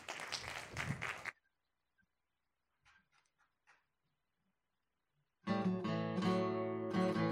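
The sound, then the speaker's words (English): A short burst of applause and crowd noise for a musician's performance opens, cutting off after about a second, then near silence with a few faint clicks before music starts up loudly. “And let's have a round of applause, whether you're at home or wherever you are.”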